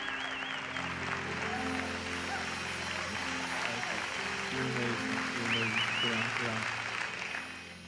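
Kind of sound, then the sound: crowd, audience applause and cheering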